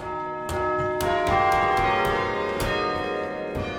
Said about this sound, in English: Like we had this simultaneous recording of like the chimes from 12 different locations on campus.